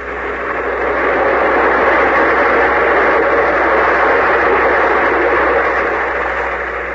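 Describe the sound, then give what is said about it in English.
A train engine runs steadily in the heat with a continuous, dense rumble and hum, holding at an even, fairly loud level throughout with no voices. “That train, this heat.”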